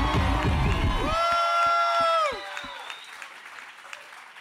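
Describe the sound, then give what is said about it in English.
A loud crowd claps and cheers with high whoops as Jake Walker is brought on stage. The ovation cuts off after about two seconds, leaving a handful of scattered, fading claps. “Fucking hands together right now for Jake Walker.”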